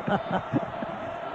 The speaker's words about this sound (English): Right now, those players are kind of wasting energy trying to lead the crowd. I think the crowd's doing a fine job.